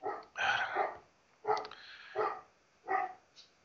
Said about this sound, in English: There's something about my dog barking very loudly.